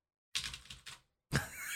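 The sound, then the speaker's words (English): Loud clacking of a mechanical keyboard at a corner desk while games are being written: a quick run of keystrokes, a short pause, then the typing starts up again in a dense burst. “So I'll be writing the new games up here on my mechanical keyboard.”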